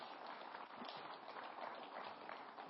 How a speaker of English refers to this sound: Okay, if you go and take your seats, well done. Give them a clap as they go take their seats.